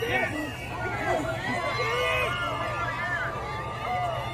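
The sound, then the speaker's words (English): A crowd of a couple hundred people cheers and shouts in a steady, continuous roar, many voices overlapping in a dense wash of raised yells with a low rumble beneath. “Listen to the crowd cheer.”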